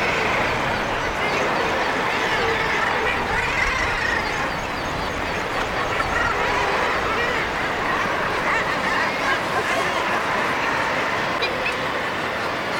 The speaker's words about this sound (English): So I'm looking down onto the stack now, and as you can hear, it's just like a whirl of different seabirds' voices, mostly kittiwakes and guillemots. And there are some razorbills in there, which are more sort of loners.